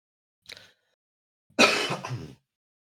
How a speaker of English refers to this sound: Also, I have a cough. You're still coughing? Yeah. Really? Guys, it really sucks. Yeah. I had the best time at the concert, and then I got COVID.